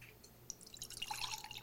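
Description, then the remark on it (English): Sake trickles from a bottle into a glass: a soft, bubbly splashing that thickens after a few scattered drips, with a faint ringing tone as the glass fills. No talking. “Well, let's get our bottles open and into the glass.”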